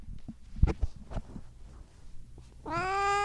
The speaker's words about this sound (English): I press record and the cats start scratching at the door. This happens without fail every time. It's like they literally wait for me to press record to start meowing at me.